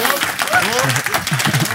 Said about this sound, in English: So I'm going to ask for a massive round of applause for this presentation on this very subject.